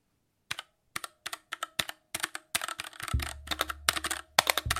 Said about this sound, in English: So I have today the Keychron K6, which is a mechanical keyboard in front of me. Let's hear it. Let's hear it. Put the mic down to it.